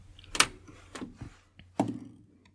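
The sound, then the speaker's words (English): A few sharp clattering knocks as dice are rolled across a hard tabletop, arriving in uneven bursts with short rattling tails between quieter pauses. No voices are heard. “Roll any dice to see if you keep control of your vehicle.”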